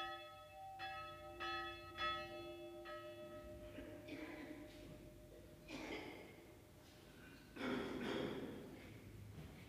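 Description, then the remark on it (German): A funeral death bell tolls at a narrow cemetery outside Sopron, Hungary, in slow, repeated strokes with long ringing overtones as the priest walks toward the chapel, followed by softer clangs and a murmur of background noise. “Sie läutet, dass der Pfarrer jetzt das Haus des Totengräbers verlassen hat und auf die Kapelle zugeht.”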